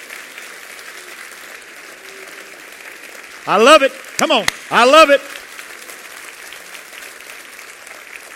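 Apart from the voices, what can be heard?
audience clapping hands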